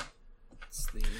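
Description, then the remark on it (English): Small dice clatter briefly across a hard tabletop as damage is rolled with an eight-sided die, a quick burst of light clicking that settles within a second, with faint voices murmuring in the background. “Let's roll that damage.”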